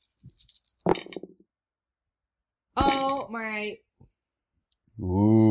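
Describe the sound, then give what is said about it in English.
A brief rattle of dice tumbling across a surface, a few quick clicks ending in a sharper clack, followed by people exclaiming and talking. “Okay, I got a -1 on the dice,”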